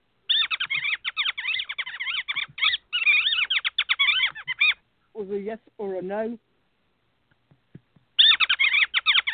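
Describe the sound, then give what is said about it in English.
Shrill, rapid mouse squeaking chatters in long busy bursts, breaks off while a person briefly asks a question, then starts up again just as loudly. “Thank you for Google and the people upstairs and the mice who kept interrupting.”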